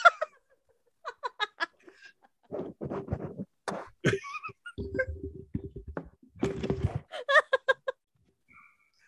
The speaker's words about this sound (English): I knocked my mic out. Sorry. You should hear it in the microphone, in our earphones. We just hear. My mic looks really wrong.